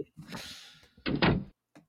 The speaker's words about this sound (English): Oh, man. A door closed.